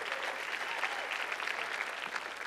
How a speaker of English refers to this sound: So why don't you give yourself a big round of applause for being at church on a Wednesday night tonight.